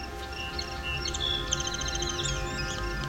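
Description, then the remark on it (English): A song sparrow sings a complex series of notes and a buzzy trill, with an American redstart's song overlapping near the end, over a steady low background hum. “And sometimes the complex song of the song sparrow was heard, but often it was overlapped with other species, such as this one that has an American redstart song overlap at the end.”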